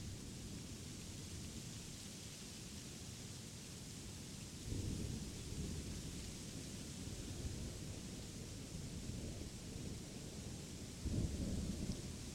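Steady rain hisses over a low, continuous storm rumble, with rolling thunder swelling louder around five seconds in and again near the end. No voices are heard.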